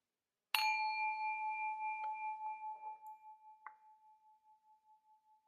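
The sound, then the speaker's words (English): A single meditation bell is struck once at the start of a talk at a meditation center in Redwood City, California, and rings out with a clear, sustained tone that slowly fades with a gentle wavering shimmer. It is alone, with faint small clinks partway through. “I'll begin with the sound of a bell.”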